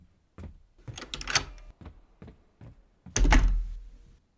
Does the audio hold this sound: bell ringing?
no